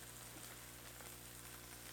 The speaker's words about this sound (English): I put some non-stick cooking spray in, and now I'm putting in my breakfast sausage. Super sizzly. You getting sizzling. The sizzle, you just getting static? It's both.